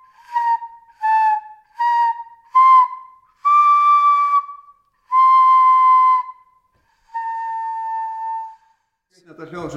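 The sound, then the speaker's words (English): A stone transverse flute, made from the same kind of rock used to make gravel stones, plays four short, breathy notes followed by three longer held tones at a similar mid pitch, clear and fairly loud, before a voice starts speaking at the very end. “Stone flute. Made from same kind of rock as they used to make gravel stones, drill set, and this is magnificent.”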